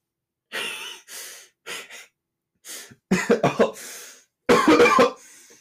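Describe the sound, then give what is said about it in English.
A fit of loud, real coughing: a few breathy rasps at first, then a rapid burst of harsh coughs, a brief pause and one more forceful hacking cough, with no talking. “that was a real cough, by the way.”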